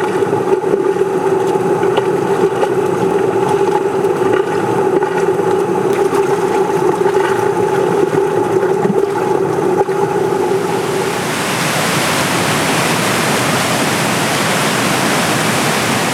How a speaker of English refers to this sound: But as I've made my way upstream, I've reached the apex of the roar. And I feel like I am where I was 3 years ago. My thoughts were just a mere reflection of the river's continuous crash.